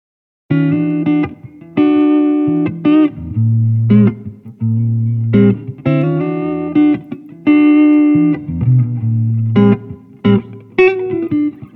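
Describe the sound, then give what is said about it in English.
A guitar plays a steady run of chords and single notes, loud, recorded with a pair of Rode M3 microphones, with a generous wash of natural echo-chamber reverb mixed in at quite a high level so each note rings and blooms behind the dry attack. “Again, the reverb is mixed in at quite a high level, but to my mind, this really works well.”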